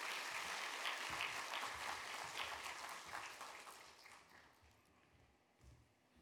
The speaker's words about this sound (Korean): 우리 한번 감사합니다, 축복합니다, 박수로 환영하겠습니다.